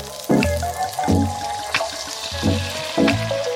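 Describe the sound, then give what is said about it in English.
Water runs into a cooking pan for salted water to boil noodles, with a steady rush broken by several gurgling splashes as it fills. No one speaks. “Now, the first thing we need to do is get a pan of salted water on the boil, and we're going to cook the noodles according to the instructions on the packet.”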